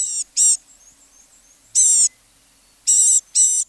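A blue-gray gnatcatcher gives five thin, buzzy, high-pitched calls in a broken rhythm (a quick pair, a single, then another pair), clear against a quiet background.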